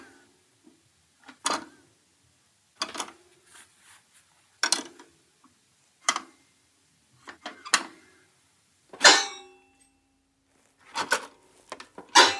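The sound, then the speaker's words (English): Metal parts inside a toy piano clank together as it is held up, tilted forward and quickly flipped back, with the keys held down so the hammers can't strike the metal sheets. There are a dozen or so sharp, irregular bursts with brief rattly tails, one ringing a little longer, separated by quiet gaps and no voices. “So he's holding up the piano, tilting it forward, and then quickly flipping it back, and all the metal inside clanks at the same time.”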